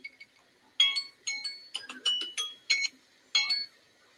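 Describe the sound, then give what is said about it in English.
A timer for a COVID test chimes a short, bright piano-like tune of about seven quick notes at shifting pitches, each ringing briefly, with no voices. “I love the little piano. Yeah, it's a timer.”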